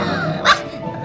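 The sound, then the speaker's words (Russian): An unfamiliar dog eating the last pink bagel gives one short, sharp bark, almost a yip, partway through, standing out clearly above a steady low background murmur. “Собака последнюю розовую бараночку доедает.”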